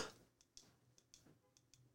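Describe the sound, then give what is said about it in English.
A burst of noise followed by a handful of light, crisp key clicks at irregular intervals, fairly quiet, with no voices present, as someone accidentally leans on the keys to his truck. “I leaned on my keys.”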